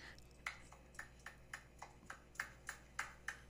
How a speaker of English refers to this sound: Is it someone clapping their ass? Yes.